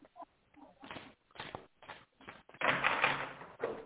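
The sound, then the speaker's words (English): Shuffling of a deck of tarot cards: several short, crisp papery bursts, then a longer, louder riffling flurry and one final quick flick, with no one speaking. “And one more shuffle.”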